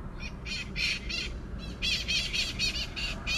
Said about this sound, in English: I feel like this bird is competing with me. What the heck? He's like, yo, chick, you in my territory, okay?